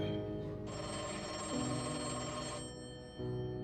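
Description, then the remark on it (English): A telephone bell at the Berkeley police department rings in one sustained, bright burst lasting about two seconds, over a steady low musical drone that continues after the ringing stops. “Over the next 19 days, Berkeley's PD phones were ringing off the hook, all with tips on who had taken Christine.”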